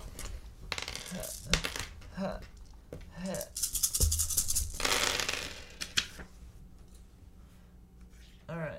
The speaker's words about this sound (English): So we're, let me roll. Rolling's the dice.